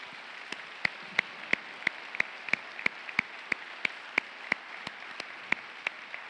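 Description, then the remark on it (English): An audience claps in steady unison for local school administrators, teachers and assistants, who are standing: sharp, evenly spaced claps at a brisk beat rising above a constant hiss of scattered applause, with no voices. “And y'all keep standing just for a second, because we're going to do one more clap.”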